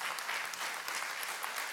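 A crowd claps steadily for a couple of seconds, a dense, even patter of many hands.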